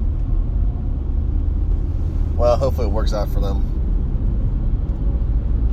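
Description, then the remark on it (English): A steady, low engine and road rumble from inside a car driving in slow rush-hour traffic, continuous for the whole stretch, with a man talking briefly over it partway through. “I was wondering why traffic was so bad here, but yep.”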